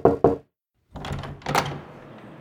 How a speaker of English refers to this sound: Knock, knock. Who's there? New variant. No! Go away!